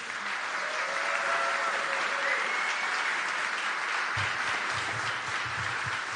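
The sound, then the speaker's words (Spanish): An audience applauds steadily for about six seconds to welcome a special guest who spent 41 years in the major leagues as a player and manager. It is a dense, even wash of many hands clapping with faint whistles or cheers, and a few low thumps toward the end. “Yo quiero que lo recibamos con un fuerte aplauso.”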